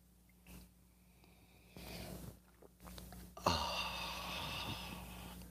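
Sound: sipping a drink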